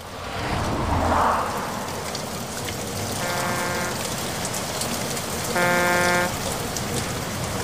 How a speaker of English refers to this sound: Pouring rain. Pitch black.